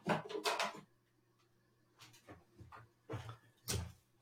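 A drawer slides open with a rattling scrape, followed by a few scattered bursts of clattering and shuffling as items inside are pushed around, with a faint steady hum underneath.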